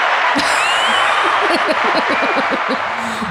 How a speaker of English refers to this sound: I'm playing applause right now.